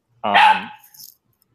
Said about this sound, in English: Quiet. We've got dog participation on the show. Sorry.